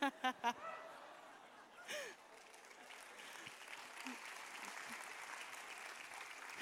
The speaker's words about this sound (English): Listen, you clap for that